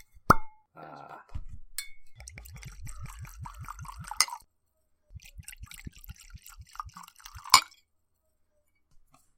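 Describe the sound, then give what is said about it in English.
A glass clink, then liquid glugs out of a newly unsealed square glass Great Northern bottle in a quick, even run of about a dozen low, hollow gulps, followed by softer splashing and another sharp clink. “It's a very nice sort of square glass bottle.”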